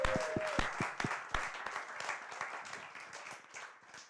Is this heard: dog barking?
no